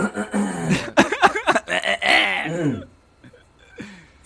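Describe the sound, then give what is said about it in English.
A fairly loud bout of coughing and throat-clearing, several rough bursts mixed with voiced, strained vocal sounds, then fading to a few quiet breaths and small noises. “I'm coughing.”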